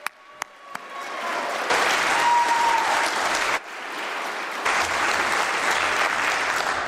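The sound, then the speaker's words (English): In a Methodist church, the audience bursts into sustained applause to cheer on a woman preaching there for the first time. After a few scattered early claps, the clapping swells loud and steady, with a brief whistle or cheer rising above it partway through. “so let's cheer her on.”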